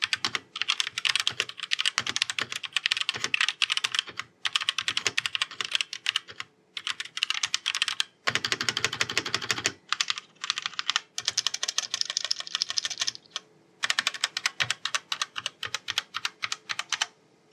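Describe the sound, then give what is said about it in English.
Rapid, continuous typing on a mechanical keyboard with RGB backlighting, dense clacky keystrokes with brief pauses between bursts and a few heavier thuds, no voices. “So this is what the keyboard sounds like.”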